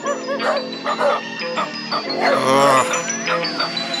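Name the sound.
dogs barking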